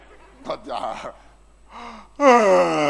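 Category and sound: human body sound, a person yawning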